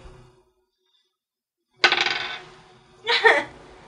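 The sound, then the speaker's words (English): Dice clatter onto a hard tabletop in two separate rolls, each a sharp rattling burst that quickly settles, with no voices over them. “You need better dice. It's not so the whereabouts dice, are you? It's the roller.”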